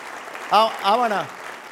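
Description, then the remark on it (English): A church audience claps steadily for the mothers standing up, a dense, even wash of applause, while a voice rises above it in two drawn-out, sing-song calls. “Come on, give them a good clap offering.”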